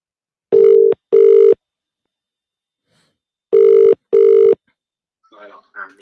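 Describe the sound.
A telephone ringing tone sounds twice in the classic double-burst pattern, loud and steady, as a host dials up the next caller on a phone-in, then a faint voice briefly begins to speak as the call connects.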